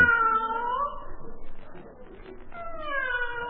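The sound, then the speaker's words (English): A cat yowls at night in long, drawn-out wails, two sustained cries with a rougher, noisier stretch between them, loud with no one talking. “Now, why does that fool cat keep screaming its head off?”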